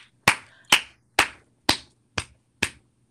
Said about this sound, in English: Now, I only clap very quickly before you say anything. I only clap because I've been making that point for 3 years.